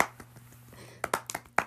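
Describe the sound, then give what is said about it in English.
A single person claps for themself after correctly spelling "condominium" in a spelling game, in a quick, uneven burst of about five sharp, bright claps, following softer faint taps at the start, with a steady low hum underneath. “I'm clapping for myself on that one.”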